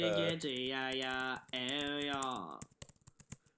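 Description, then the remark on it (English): Rapid, hard, angry typing on a computer keyboard, a dense run of clicks, under a loud droning, voice-like tone for the first two and a half seconds, then clattering on alone. “What are you typing so angrily?”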